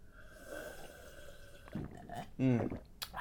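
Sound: drinking cold water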